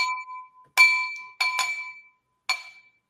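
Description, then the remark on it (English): A water glass is tapped several times with irregular pauses, each strike a bright clink that rings out in a clear sustained tone before fading. “I've got a water glass, and this is a cool little eyeglass cleaner.”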